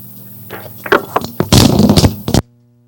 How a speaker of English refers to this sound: Throwing the phone.